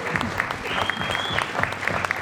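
A live audience breaks into steady applause, dense overlapping claps forming a continuous loud wash with no voices standing out.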